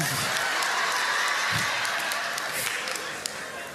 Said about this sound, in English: If you're gonna clap, clap. Come on now. There might be some folks not clapping because they like, that's me.